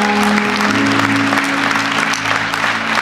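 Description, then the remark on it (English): An audience claps steadily for about three seconds, a dense, even wash of many hands with no voices rising above it, loud throughout. “Yeah, we could clap right now.”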